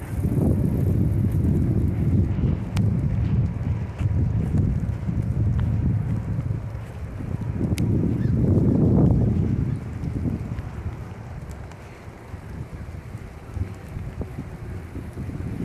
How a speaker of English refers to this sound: Oh my God, it's raining. It's raining.